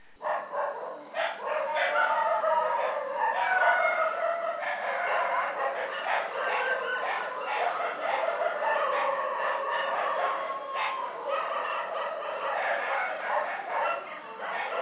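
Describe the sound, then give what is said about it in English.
Several stray dogs, including a Dachshund and a Pomeranian, bark continuously and overlapping in a backyard in a loud, chaotic chorus, with sharp yaps layered over deeper barks and no pause for the whole stretch. “what she calls canine symphony or canine cacophony, where there are stray dogs barking in her backyard”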